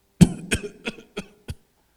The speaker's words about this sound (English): And when my dad went to see her, my dad heard somebody coughing.